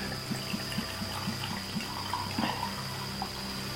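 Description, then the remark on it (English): Wine is poured steadily into a glass, a continuous liquid splash broken by a quick run of soft, rhythmic glugs. Nobody speaks. “So let's pour one out for the homies.”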